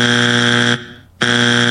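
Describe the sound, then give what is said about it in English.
Two loud, harsh buzzer blasts, like a game-show wrong-answer sound: a long flat droning buzz, a brief pause, then a second buzz cut short at the end. No voices. “I would like to give them 2 buzzers”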